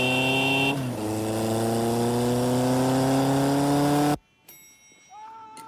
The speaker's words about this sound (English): He knows how to rock and roll on that motorcycle.